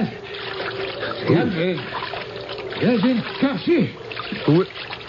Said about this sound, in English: There was someone in the water swimming towards us.